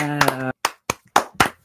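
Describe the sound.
A short, sparse round of applause: about six sharp hand claps at an uneven, slowing pace, the first couple overlapping a brief sustained voice before the rest ring out alone.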